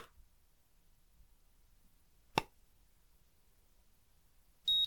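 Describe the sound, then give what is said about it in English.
A single sharp click of a thermometer, then after a short quiet pause a brief high-pitched electronic beep as it finishes taking the temperature. “So I'm going to click the thermometer, and it'll make a small beep when it's taken the temperature, okay?”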